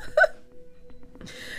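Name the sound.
hiccups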